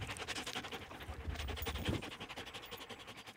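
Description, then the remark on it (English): A racing greyhound on a breeder's farm in Wellsburg pants rapidly and steadily right against a reporter's microphone, with muffled bumps and rubbing as it nuzzles the mic. No one speaks. “As one of his dogs nuzzles the reporter's microphone,”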